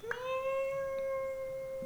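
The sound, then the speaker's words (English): A person imitates a cat with one long, steady, high-pitched meow held for nearly two seconds, clear, ending abruptly in a short burst of noise. “And the people were totally convinced there was a cat and looking for it.”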